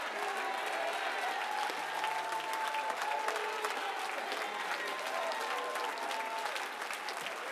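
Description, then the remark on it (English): An audience, standing to clap their hands unto the Lord, claps steadily for several seconds, a dense, even wash of many overlapping claps with faint crowd murmur and indistinct voices underneath. “Come on, stand on your feet and clap those hands unto the Lord.”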